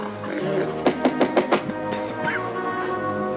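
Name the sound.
tapping on a door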